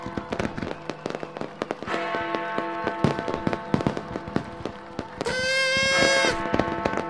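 Fireworks set off at New Year crackle and bang in a rapid, dense barrage of sharp pops, with a shrill whistling screech rising over the explosions near the end; no voices are heard.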